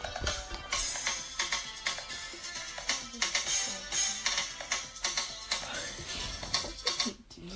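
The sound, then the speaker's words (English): A bright, tinny jingle plays from a small phone speaker as a woman watches a video on her phone, busy and upbeat with steady rhythmic hits, at moderate volume for several seconds with no one talking over it. “Tracy's watching something on her her phone, and it had a fun little jingle”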